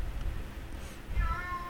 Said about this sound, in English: What's the fun of recording this with animals? My cat's crazy. That was probably picked up on air. I guarantee it. I mean, there's no way that wasn't. That was so loud. She was just meowing loud